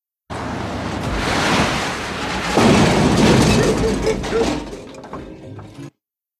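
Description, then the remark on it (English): Metal trash cans being struck by a character on screen, a dense clattering, rattling wash with a sharper, louder crash about halfway through, followed by faint metallic ringing that trails off before stopping abruptly. “It's when he hits the cans, the trash cans”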